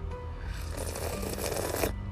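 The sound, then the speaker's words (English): A single long, wet slurp of the first morning cup of coffee that builds in strength and then stops abruptly, heard alone over a low background hum, with no talking. “And that slurp is for Grizzly because he tried so hard the other day and couldn't get it.”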